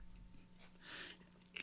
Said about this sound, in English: I think you would have belonged right in hand with a nice bottle of vitamin water. I'm currently sipping on the XXX zero sugar variety.